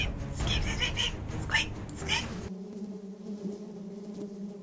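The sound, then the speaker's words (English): Bees buzzing in a dense, droning hum. For the first couple of seconds it is mixed with loud, frantic yowling cries, then the steady buzz continues on its own at a lower level. “No. Not the bees. Not the bees!”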